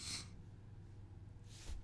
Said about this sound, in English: I've really got the sniffles. I got allergies really bad.